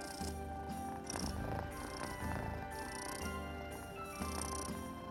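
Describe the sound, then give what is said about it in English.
A domestic cat purrs steadily while sitting on a person's lap, a low rumbling drone that swells and eases in a slow, regular breathing rhythm, with no voices over it. “Fine. You can sit on my lap, but you have to be quiet.”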